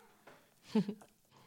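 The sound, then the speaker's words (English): A single short, soft meow from Scar the Kitten, a show's mascot, sitting at a dinner table, rises briefly out of quiet, faint, lasting only a moment before fading back to near silence. “And the mascot of the show, who's actually sitting at the dinner table with us right now, it's Scar the Kitten.”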